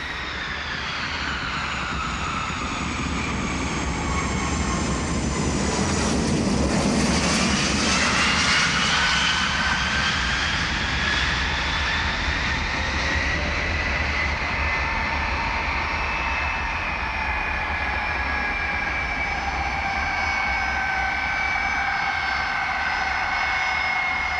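A jet airplane landing at John F. Kennedy Airport in America and taxiing: a steady engine roar with a high turbine whine that swells loudly for a few seconds, then settles into a shifting, droning whine. No voices.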